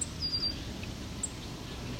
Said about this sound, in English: short call means this song sparrow thinks I'm in his territory. Doesn't like it.